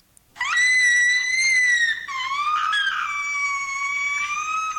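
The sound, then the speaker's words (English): An 11-year-old girl opening a present lets out a long, shrill scream of excitement, loud, holding one piercing pitch for several seconds before dipping lower and carrying on to the end, with no talking. “That's excitement. Oh, really? That's actually about an 11-year-old girl opening a present, and it's so exciting.”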